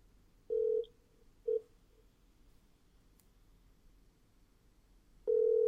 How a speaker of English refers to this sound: It's ringing. And that sounds like normal phone ringing.